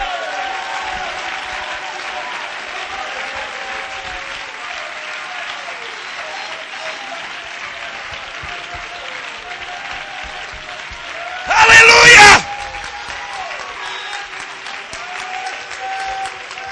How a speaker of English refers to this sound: I wish somebody just shout right now, clap your hands.